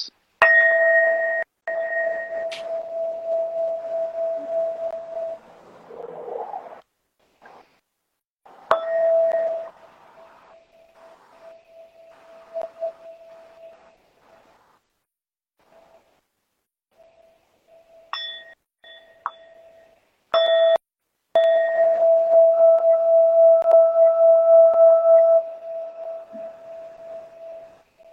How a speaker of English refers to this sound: So I'm gonna chime this 3 times. Every time I chime, take a deep breath in and release.